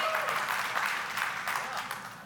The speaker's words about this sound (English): You clapping because of my admission or because of his smarty?